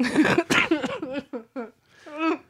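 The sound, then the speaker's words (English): A person trying to laugh lets out a couple of rough, breathy coughs, then breaks into a short run of choppy, voiced laughter, ending in one drawn-out giggling exhale. “It's just I went to laugh and I had to cough.”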